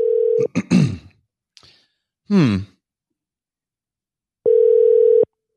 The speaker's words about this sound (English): Let's make a phone call here. Turn that music down. Let's see if this works.